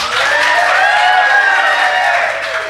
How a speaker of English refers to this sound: All right, please give it up for Storm if you think she should win this point.